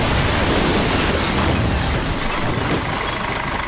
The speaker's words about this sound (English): Oh, but wait a moment. Who's this regular character that's about to come crashing through the studio wall on his tractor?